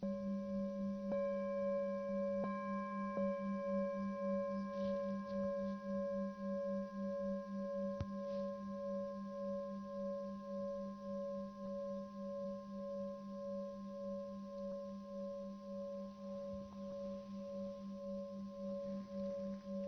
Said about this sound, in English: And the movement of sound through time. And the movement of the sound of the bell through time.